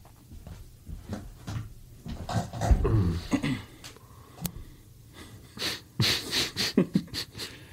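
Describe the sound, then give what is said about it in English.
A dog named Tugboat chews and gnaws on a cable, with irregular crunchy clicks and bursts of snuffling, snorting breath between bites. No one speaks. “Is he eating a cable?”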